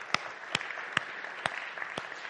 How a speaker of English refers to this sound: I want to thank all of the PA guys today. They work tirelessly to make sure that that happens on the screen. And it's a big task. So let's give them a clap as well.